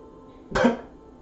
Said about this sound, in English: Her cough gets worse and blood splatters across your face.